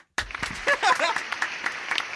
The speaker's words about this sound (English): Let's have another round of applause for Frank Ntilikina.